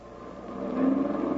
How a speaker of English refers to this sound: Mechanized unit bringing up the rear, sir. Truck transports and tanks. Clear the road and let them through.